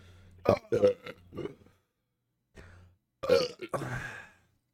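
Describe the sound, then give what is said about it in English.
A series of loud burps comes in two bursts, several short gulping belches, a pause, then a longer, rumbling drawn-out belch. “We're gonna have to put a fucking burp counter up.”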